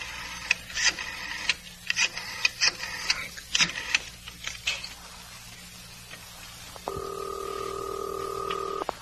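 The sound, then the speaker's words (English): A telephone is dialed, a quick run of short electronic beeps and clicks, followed by a steady, continuous line tone that holds to the end. Close and clear, with no voices. “I kept trying to get Chris on the phone, but the line was always busy.”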